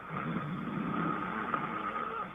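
A man snoring in a steady, rough, rumbling drone that holds at an even loudness for a couple of seconds, sounding a bit like an idling engine, with no talking.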